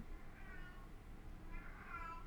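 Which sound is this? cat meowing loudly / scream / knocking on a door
cat meowing loudly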